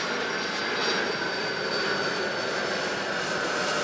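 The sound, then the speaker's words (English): A loud, steady roar of an airplane passing overhead, a broad continuous engine drone with a faint high whine, without any talking; flying over an amphitheater a few miles from the Louisville airport during a performance of The Merry Wives of Windsor. “In a recent performance of the slapstick play, The Merry Wives of Windsor, the aircraft soared over after an actor delivered a rather on-the-nose line.”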